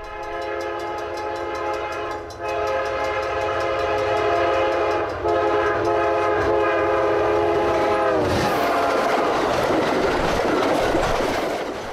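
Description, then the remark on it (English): A passenger train leaving La Junta station sounds its loud, sustained multi-tone horn in three long blasts with short breaks, then cuts off into a steady roar of rumbling, clattering rail noise. No one speaks. “After leaving La Junta, we pass Las Animas, which sits along the Arkansas River, just west of where the Purgatory River flows into the Arkansas.”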